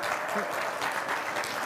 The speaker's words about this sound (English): Pastor, why does that always get applause? They did in the first service too. I don't know why everybody's clapping because they hate Ohio State.